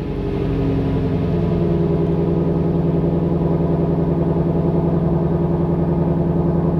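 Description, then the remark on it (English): A Ford Mustang GT350 engine of 556 horsepower runs steadily, a deep, rumbling, loud drone that holds a constant pitch throughout without revving up or down. No one speaks over it. “It's a Ford Mustang GT350, okay, 556 horse.”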